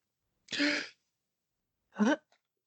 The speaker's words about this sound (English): And I was just gasping for you.